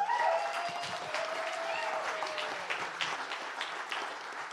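A crowd bursts into a sustained round of applause for a youth worship team, dense steady clapping that holds for several seconds, with a faint whistle or tone sliding through at the start.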